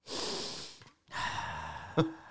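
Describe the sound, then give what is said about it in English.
Two long, breathy inhalations taken before speaking, the first a broad airy rush, a brief pause, then a second deep breath ending in a short catch, with no talking. “Waste 5 seconds breathing.”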